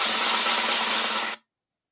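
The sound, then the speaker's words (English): A quick, dense snare drum roll rattles steadily at full volume for about a second and a half, then cuts off abruptly into silence, with no voices. “Give me a drum roll, please, for the IDP Iggy Do It All DB.”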